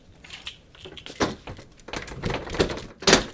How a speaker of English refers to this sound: And there is our safe unlocked.